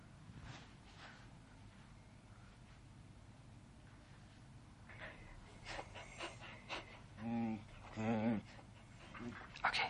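A dog pants in quick, rhythmic breaths, the huffing growing louder and more excited toward the end, with a few brief whiny, vocal-sounding bursts mixed in.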